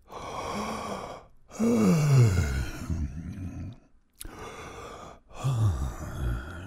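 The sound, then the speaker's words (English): A person yawns loudly, drawing out two or three long, breathy yawns that slide down into a low groaning tone, with brief pauses between them and no talking. “Here's a message for the 21 of you out of the 29 who just yawned at me.”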